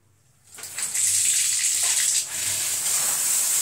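A cold shower switches on after a brief quiet moment, becoming a steady, loud hiss of spraying water that pours continuously, with no voices.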